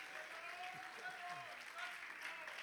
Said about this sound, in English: Oh, if you believe that, somebody clap your hands and give God praise one time today.